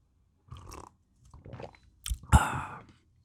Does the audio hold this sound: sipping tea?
yes